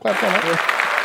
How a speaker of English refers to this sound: I'm not clapping up that the officer got hit. I'm clapping up the accuracy.